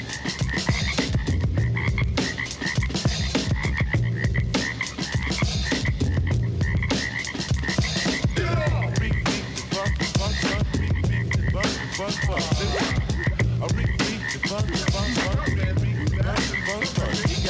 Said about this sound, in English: Still hear the frogs dancing in the street.